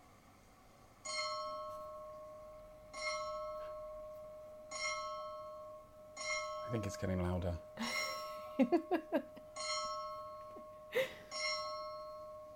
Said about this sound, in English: Do you want to hear the bell? Yes.